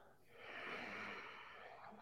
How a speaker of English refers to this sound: To the sound of your breath. Look at that. Maybe that's sound of her breath. Implementing Ujjayi breath here.